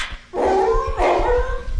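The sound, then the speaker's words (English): A duck hunter's dog, called by its owner, barks twice, each bark drawn out into a long, tonal, whining cry, with soft rhythmic thumps low underneath and no talking. “In order to hunt ducks, you've got to have a dog. So our duck hunter, he calls his dog.”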